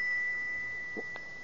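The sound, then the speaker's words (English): A thin, steady bell tone rings throughout, high and quiet, with two light taps near the end as a rose crystal pendant strikes the bell. “You hold the bell, and I'll tap it with the pendant.”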